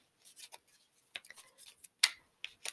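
Quiet papery flicks and snaps of a deck of ordinary cards, not tarot cards, being shuffled for a card reading, a string of short crisp bursts with a sharper slap near the end, no voices.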